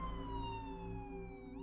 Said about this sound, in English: they loaded her into the back of the ambulance, and then seconds later, they were flying down the road with their sirens blaring.